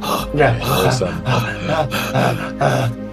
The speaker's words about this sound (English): Heavy breathing.